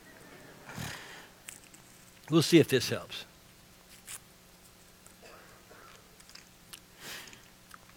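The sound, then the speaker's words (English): Crinkling of a cough drop wrapper being torn open, followed by quiet, intermittent wet sucking and clicking mouth sounds, with a man briefly speaking in between. “I got a cough drop here.”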